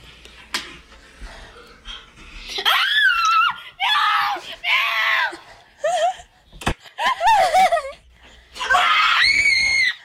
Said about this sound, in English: It's from 6 years ago. Why did you scream so hard? We were doing a skit.